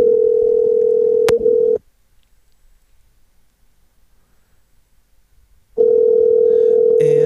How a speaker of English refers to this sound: Answer the phone. He told me I had to call.